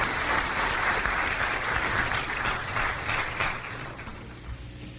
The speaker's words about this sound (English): don't you give God another hand clap of praise?